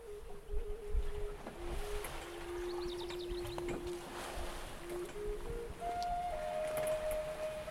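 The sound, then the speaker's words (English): A boat moves steadily along a river, its low droning hum shifting pitch now and then over a continuous wash of water and wind, with no voices. “On the boat in the river, excitedly, Clark enters his encounter in his journal.”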